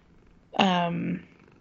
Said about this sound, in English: Can you hear that purr?